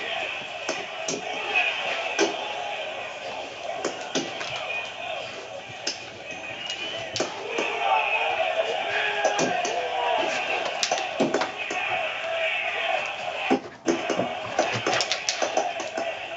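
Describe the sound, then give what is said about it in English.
Repeated sharp punch impacts, right hooks, from a video game fight between an American and a Russian fighter land in quick, irregular bursts over a dense, busy background of game noise and murmuring voices. “See, right hooks, right hooks.”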